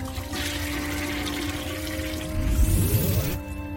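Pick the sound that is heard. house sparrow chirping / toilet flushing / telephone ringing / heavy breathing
toilet flushing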